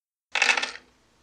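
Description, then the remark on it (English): A brief clatter of dice being scooped together and rattled, a dense burst of small hard clicks lasting about half a second before trailing off into quiet. “Okay, let me grab all these dice real quick.”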